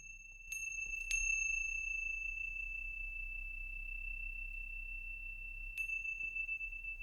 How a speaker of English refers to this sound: Will you hear the sounds of the chime coming back into this space?